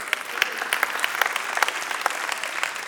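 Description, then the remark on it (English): Steady audience applause fills the whole stretch, a dense patter of many hands clapping at a moderate level with no voices standing out. “And the training, we can clap for that.”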